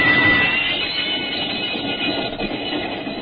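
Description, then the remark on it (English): A train heading north from Chicago over Illinois and Wisconsin rolls steadily along the rails, a continuous rumble and rattle holding at an even, fairly loud level throughout, with a faint high squeal near the start and no voices. “The train left Chicago and headed north, and then slightly west over Illinois and Wisconsin.”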